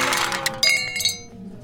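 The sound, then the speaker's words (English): A malfunctioning espresso machine in a coffee shop clanks and clinks, with a few sharp metallic knocks over bright ringing tones that fade away within a couple of seconds, and no voices. “Well, I think maybe your espresso machine stopped working”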